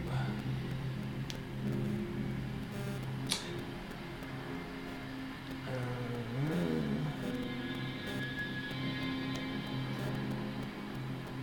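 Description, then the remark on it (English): Outdoor car park ambience with a steady low engine drone, and around the middle a car engine revs up and settles, rising and falling in pitch. Faint clicks and ticks sit in the background. “Okay, right, so you're now in the car park.”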